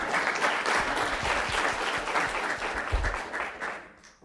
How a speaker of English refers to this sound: So now you can do the clapping.